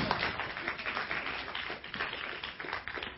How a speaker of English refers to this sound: Okay, a round of applause for the guy with the finest boots in Urban Grace.